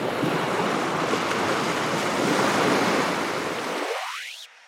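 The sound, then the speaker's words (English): Loud, steady roar of waves breaking against a shore, a continuous rushing wash of surf with some wind, fading out abruptly at the end. “We hear fragments of this early Earth today in the spasms of earthquakes and the sounds of wave-pummeled seashores, windy mountaintops, rainfall, and lively rivers.”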